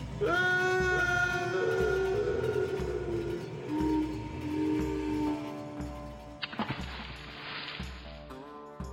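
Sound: train running on rails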